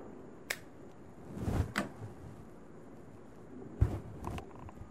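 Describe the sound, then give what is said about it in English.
A lighter clicks several times at irregular intervals to relight a cigar that went out, with a soft burst of flame between the sharp clicks, against a low background rumble and no talking. “So, yeah, I've, let me relight my cigar here.”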